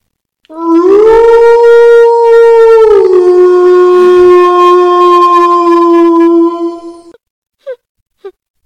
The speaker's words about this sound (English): This next one is a wolf howl.